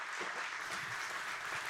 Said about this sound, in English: It's a good place to clap.